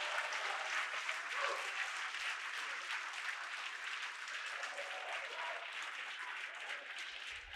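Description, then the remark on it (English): An audience applauds steadily for several seconds, a dense, even wash of many hands clapping at once, holding a fairly constant level throughout with no voices standing out. “Those claps need to turn into dollar signs too.”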